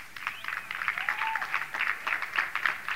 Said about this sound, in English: But the reason there's a smattering of claps is because you know you haven't been doing it, even though I've been pounding it down your fucking throat for the last 3 years.